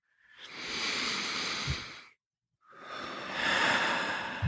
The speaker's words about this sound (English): And just maintaining that soft focus, just take a couple of big, deep breaths. So just breathing in through the nose.